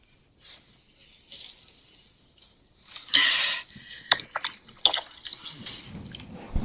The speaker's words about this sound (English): She turned on the garden hose.